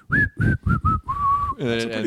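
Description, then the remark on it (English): A person whistles a short, slightly breathy tune: four quick notes followed by a longer held note, then a voiced, hum-like sound takes over at the end. “I can't whistle that well.”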